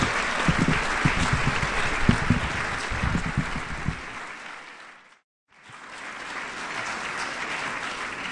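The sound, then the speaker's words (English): An audience at a Socrates in the City event bursts into a sustained round of dense, steady clapping to welcome Dr. Alice von Hildebrandt to the podium. The clapping gradually fades, breaks off briefly into silence, then resumes as softer, continuing applause. “Please give her a round of applause and welcome her yourselves.”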